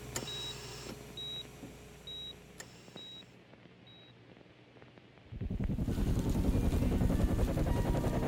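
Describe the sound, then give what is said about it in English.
A series of evenly spaced electronic beeps gives way to a loud, rumbling thrum of military and media helicopters hovering overhead above Jamili Hospital, their steady rotor chop filling the last few seconds. “A horde of military and media helicopters hovered like dragonflies over Jamili Hospital.”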